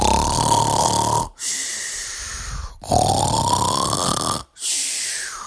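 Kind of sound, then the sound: sound effect, loud thunderous snoring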